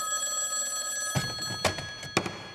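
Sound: telephone ringing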